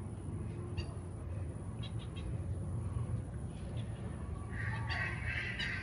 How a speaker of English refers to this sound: So it's like a squeak toy. Now that's a duck over there, some shit.